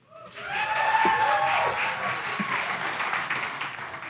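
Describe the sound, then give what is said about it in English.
Audience applause with cheering: dense, steady clapping swells up quickly and holds loud, with whoops and high-pitched shouts rising over it before easing slightly toward the end, welcoming a youth pastor being introduced. “And thank you for clapping again.”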